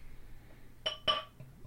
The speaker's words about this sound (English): Well, I don't know if you guys just heard that. Just crack the second beer.